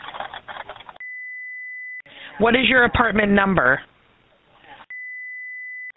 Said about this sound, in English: Your phone's breaking up